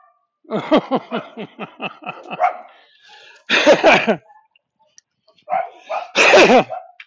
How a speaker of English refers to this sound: Ah, oh, that little dog just went after the cat like crazy.